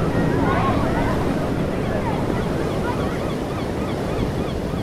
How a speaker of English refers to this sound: The sound of crashing waves and seagulls filled the air, creating a serene atmosphere.